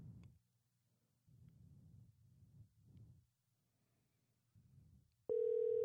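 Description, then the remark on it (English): Muffled, low telephone ringing tones of an outgoing call to a sister repeat in short bursts over a faintly humming line, then a loud, steady electronic tone cuts in abruptly at the end. “Ooh, it's ringing.”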